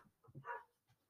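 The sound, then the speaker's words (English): A dog named Nico gives a short, sharp bark with a quieter yelp just before and a soft trailing sound after, heard faintly with no talking. “There he is, barking like crazy.”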